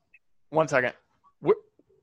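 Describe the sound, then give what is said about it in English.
Dogs bark in two bursts, a longer run of yappy barks followed by one short sharp bark, with quiet gaps around them. “I want to get these dogs inside.”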